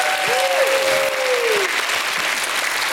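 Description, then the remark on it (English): A church audience answers a call for another hand clap and shout of praise, bursting into loud, sustained applause with raised voices of praise, including a long, rising vocal cry sliding over the steady clapping. “Somebody give him another hand clap and a shout of praise.”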